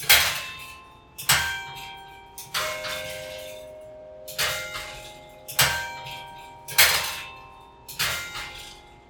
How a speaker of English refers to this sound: There's the chiming on the half hour, too. Right. Now, that one chime indicates that it was the half hour.